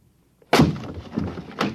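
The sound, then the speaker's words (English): A door locked from the inside is broken in with a sudden heavy crash of splintering wood, followed by a rattling decay and two smaller knocks as debris settles. No one speaks. “We'll have to break in. It's locked from the inside.”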